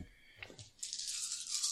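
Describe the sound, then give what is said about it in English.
A handful of dice, including an extra plot die, clatter and rattle together in a dense, bright, continuous jangle for about a second, following a couple of brief clicks. No one speaks. “And there's your handful there of dice.”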